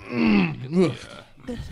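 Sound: loud yawn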